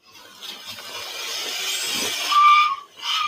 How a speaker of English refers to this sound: Those are his tires squealing.